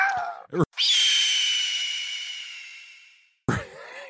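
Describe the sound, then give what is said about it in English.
A voice imitates a screeching hawk: one long, high-pitched, raspy cry that holds for a few seconds and slowly fades, with brief bits of talking just before and after. “screeching like a hawk again.”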